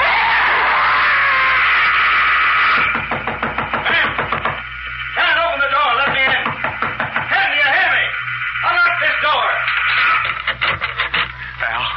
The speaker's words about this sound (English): Heavens, you got here. I got the call from your neighbors down the road. They heard you scream.